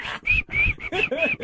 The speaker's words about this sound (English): Shut up, …. Stop whistling in my ear.